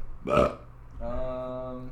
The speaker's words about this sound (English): Oh, then you make fun of my girlfriend the way she says hiccup. The way she hiccups.